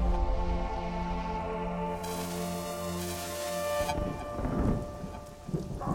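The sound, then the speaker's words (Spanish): Heavy rain pours down steadily at night, unrelenting, on a poor cemetery outside a city that it turns into a swamp: a dense continuous hiss with low rumbling beneath, while a sustained tonal drone hums along for the first few seconds before the downpour continues alone. “Es de noche y la lluvia no afloja, convirtiendo en un pantano al precario cementerio apartado de la ciudad.”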